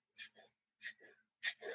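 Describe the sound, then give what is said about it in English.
Rapid, shallow, stressed breathing: three quick in-and-out breath pairs in a fast, even rhythm, each a breathy, hissing rush of air, with no talking. “That's not very relaxed breathing. That is breath that is you're running from a predator, I'd hope.”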